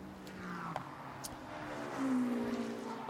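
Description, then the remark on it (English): Race car engines whine past on a track on a warm day (air 23 °C, track 33 °C), their droning pitch sliding and shifting as they go by, one rising louder toward the end, with no voices. “Other cars that we are keeping an eye and an ear on as they come past us.”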